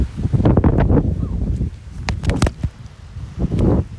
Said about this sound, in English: So sorry for the wind. It's a little windy. One second.